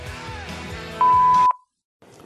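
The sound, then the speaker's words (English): A single loud, steady answering machine beep lasting about half a second cuts through busy background sound, then everything drops to silence before faint noise returns. “If you want to take a chance, lay it on after the beep.”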